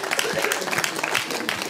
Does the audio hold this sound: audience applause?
yes